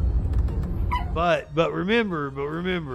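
A dog whimpers and yips, a string of high, wavering whines that rise and fall after a brief low rumbling noise at the start.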